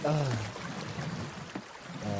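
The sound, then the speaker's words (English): Water pours and splashes in a short, noisy gush, bracketed by a voice speaking briefly at the start and again at the end. “I got water everywhere.”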